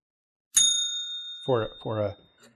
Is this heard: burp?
no